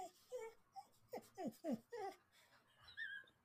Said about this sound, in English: Feed your dog or whatever is wrong with your dog. I don't ever want to hear whimpers from that dog ever again